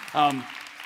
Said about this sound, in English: So yes, you should applaud for that because it's fantastic.